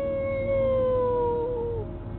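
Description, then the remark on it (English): A person imitates a wolf howl: one long, sustained, wavering tone held for about two seconds, then sliding downward and trailing off, loud with no other talking. “That's what a wolf does. You a wolf?”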